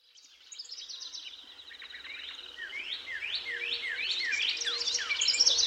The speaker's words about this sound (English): Birdsong may be music to our ears, but we live in a world where it is harder and harder to hear it, or any natural, undisturbed soundscape, for that matter.